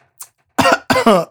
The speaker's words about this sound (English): That's right. Cough and continue.